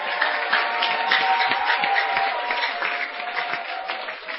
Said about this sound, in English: Clap your hands.